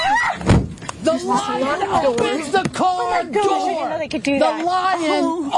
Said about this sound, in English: The lion opens the car door. Bring it up again. The lion opens the car door. That is insane.